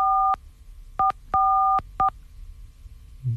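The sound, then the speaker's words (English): A string of electronic beeping tones, mixing long and short beeps in an irregular Morse-code-like pattern, loud over a low background hum, with no voices. “That did sound like Morse code.”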